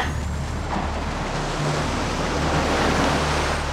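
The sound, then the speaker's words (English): A loud, continuous roar of rushing water surges without pause as it floods a tunnel, thick and heavy, with a low rumble underneath and no voices. “The tunnel. It's filling with water.”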